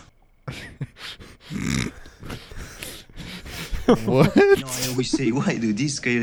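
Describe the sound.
A French bulldog makes speech-like vocalizations: grunts and snorts at first, then warbling, rising-and-falling whines and yowls that sound almost like the spoken phrase "I always say, why do this, Coyote?"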